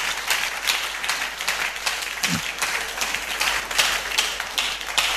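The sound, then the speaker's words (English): An audience claps together in a dense, steady wash of applause that holds at a fairly even loudness for about five seconds, with one brief low thump midway and no voices. “Can you clap?”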